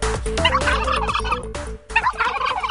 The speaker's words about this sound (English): have some different sounding turkeys each segment, I've noticed.